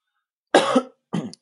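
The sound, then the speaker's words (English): Two coughs in quick succession, the first longer and harsher, the second shorter, both fairly loud against an otherwise silent background. “Oh, wait, sorry, one second. Cough.”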